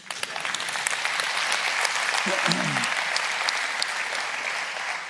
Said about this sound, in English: Now you can clap.